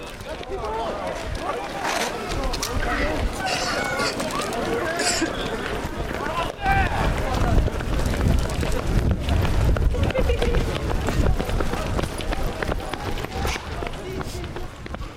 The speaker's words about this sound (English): And eventually, the sound of tear gas canisters getting launched resonated within the crowd.